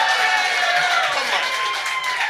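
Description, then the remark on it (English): A loud, sustained audience cheer, a dense wash of many voices shouting and whooping together, with what may be scattered clapping, holding steady for about two seconds. “That was a louder cheer.”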